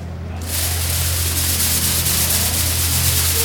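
A steady granular hiss starts abruptly after a brief pause and runs unbroken at an even level, like fine grains streaming down, over a low constant hum.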